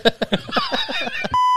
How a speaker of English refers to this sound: 41 seconds in, first beep. Oh, wow. That's got to be the record.